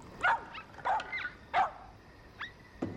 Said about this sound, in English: Now, seriously, how did that dog get up there? Maybe they've got personal transporters for the dog. Maybe. They can't have climbed up there.